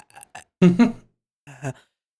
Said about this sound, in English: Wait, I was trying to burp.